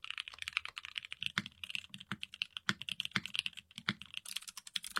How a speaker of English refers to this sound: keyboard sounds, but $1,800 for a keyboard